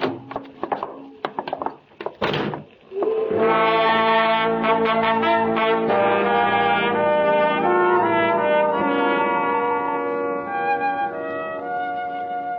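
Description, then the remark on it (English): A few scattered thumps and knocks give way to overlapping ship and tugboat horns on the Brooklyn waterfront at night, long sustained blasts mixing the deep booming tone of larger vessels with the higher, shrill whistles of tugs, holding steadily for about ten seconds. “The shrill whistle of the tugs, a basso boom of the larger vessels, are playing a funeral dirge across the night winds of the Brooklyn waterfront, carrying the coffin to its final resting place.”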